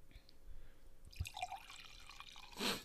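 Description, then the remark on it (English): Wine is poured into a glass as a refill during a wine tasting, with a soft, bubbling gurgle for over a second, followed by a brief, louder splashing burst at the end; the whole pour is fairly quiet. “Speaking of wine, can I get a refill before?”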